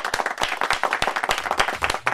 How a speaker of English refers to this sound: Ladies and gentlemen, live at Paco's Place, a big round of applause,